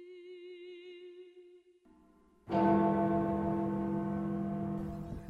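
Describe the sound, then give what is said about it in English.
After a soft, steady tone, loud church bells burst in and keep ringing in a dense, sustained wash of overlapping tones that stays strong to the end. “And then just as we'd finish the song, they'd start ringing the bells.”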